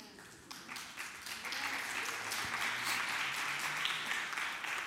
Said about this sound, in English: I'm glad some of y'all clapped.